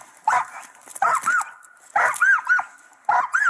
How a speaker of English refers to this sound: So anyway, it's a Malinois. It's a full grown, fully policey canine Malinois.